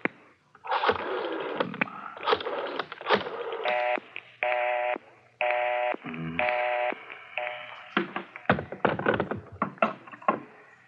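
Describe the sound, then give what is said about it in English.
A telephone number is punched in: a quick series of steady touch-tone beeps, each a short even burst, mixed with button clicks and handling taps, fairly loud, no talking. “Dial 9.”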